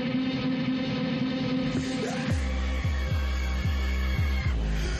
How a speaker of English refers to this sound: Fucking love this little bass line that comes in.